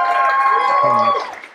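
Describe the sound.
An audience claps and cheers together, a dense wash of applause with voices whooping over it, holding steady and loud before tapering off at the end.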